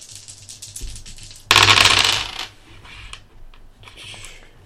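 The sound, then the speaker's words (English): A sudden bright, jangling burst of coins spills out loud, then fades into a few scattered metallic clinks and tinkles over a low background hum. “Killing him, and he bursts into coins at the bottom of the rail.”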